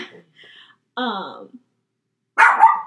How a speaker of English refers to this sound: Sorry, there's our weekly barking for my dog in our weekly episode.